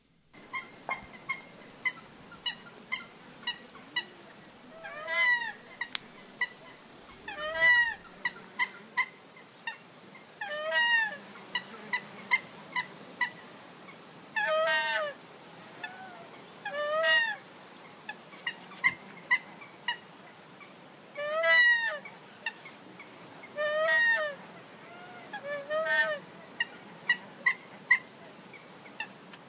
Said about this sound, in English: And let's just listen to the sound of the joyous Nene bird and celebrate its new status as merely vulnerable.